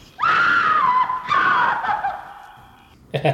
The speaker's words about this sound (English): Faye Ray as the screaming doorbell. Oh, is that where the scream came from? Apparently so.